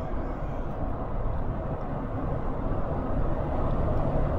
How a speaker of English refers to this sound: Okay, hang on. Let me get out of that lane. Traffic. You know, you don't usually have traffic except in the summer where I live out there, because it's only tourists. Coming inland, it's a little different.